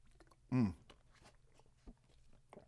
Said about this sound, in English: Sorry, I had to take a sip of water because I'm flapping my gums a little too much.